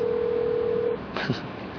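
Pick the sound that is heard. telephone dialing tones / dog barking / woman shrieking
telephone dialing tones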